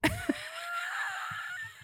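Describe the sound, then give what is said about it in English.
A sharp cough burst, then a drawn-out, high wheezing breath with faint sputters, like someone choking on saliva. No one speaks. “I actually just choked on some spit.”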